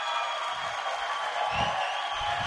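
An audience applauds in a dense, steady wash of clapping that holds an even level throughout, with a few low thumps pulsing beneath it at roughly regular intervals.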